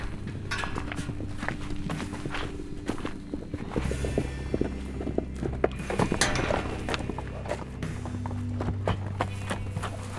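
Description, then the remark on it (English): Hooves of several horses pound steadily over the ground, a dense, continuous patter of hoofbeats, with a low rumble underneath and no voices. “I hear the galloping. Here they come.”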